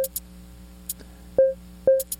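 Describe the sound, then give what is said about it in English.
Two short, mid-pitched beeps from the 16-note grid sequencer of a Nanoloop synthesizer sound about half a second apart over a low steady hum, with a few sharp clicks scattered around them. No one speaks. “So let's go back to our beep that we have right above here.”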